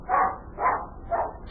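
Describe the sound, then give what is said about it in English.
A dog barks three times in a steady rhythm, each bark clear, with short pauses between them and no talking. “I hope you're not afraid of dogs. If Bunny comes in here barking, he's my dog.”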